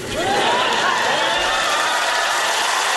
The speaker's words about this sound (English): I love how that cheer loses conviction as it starts. I think we're supposed to cheer.